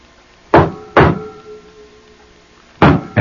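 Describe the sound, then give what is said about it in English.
Four sharp, loud knocks on a door, arriving as two pairs separated by a long pause, with a faint resonant ring lingering after the first two and no voices. “They have heard the knocking at the door.”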